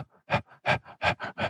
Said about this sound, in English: That's just their body's response to reassure themselves constantly that they're getting enough breath. This is the most inefficient way of breathing. It actually makes it harder for your body to get oxygen when you're over breathing.